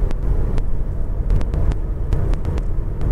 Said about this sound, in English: And that Pontiac just pulled out in front of me. You piece of crap. The car, not the person.